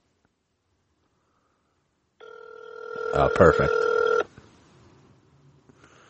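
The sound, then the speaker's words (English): A phone call to a McDonald's plays its ringback tone through a speakerphone, one steady electronic ring lasting about two seconds, with a short spoken remark over it before it fades into quiet room noise. “It's three rings.”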